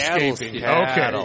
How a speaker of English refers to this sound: It's a calf, yes. It's a calf still.